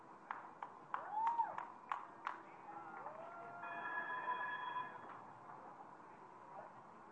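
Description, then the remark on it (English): At a ribbon-cutting ceremony as trains start to roll, a train sounds a multi-note horn chord for about a second after a few sharp clicks and rising whistle-like tones, set against a low, steady background rumble. “Get these trains going.”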